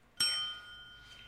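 A single bright bell ding strikes sharply and rings out with a clear, lingering tone that slowly fades. It stands alone, with no talking.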